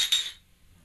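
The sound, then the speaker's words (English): Glass root beer bottles (Small Town Brewery's Not Your Father's Root Beer) clink together once in a toast, with a sharp bright ring that fades quickly into near silence. No one speaks. “Hey, salute on this root beer. Hey, cheers.”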